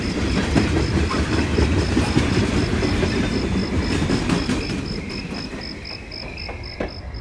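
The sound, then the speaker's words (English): A train, the Babbel Express, rumbles and clatters along the tracks, loud, with a steady rhythmic clack and a high repeating tick over the dense low roar, easing slightly toward the end. “Hear that? The Babbel Express is almost here.”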